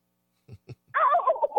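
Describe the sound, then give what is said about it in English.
A caller on the phone imitates a turkey gobble: three low, soft clucks, then a loud, rapid, warbling gobble that bubbles up and down in pitch for under a second. “Turkey man, yeah.”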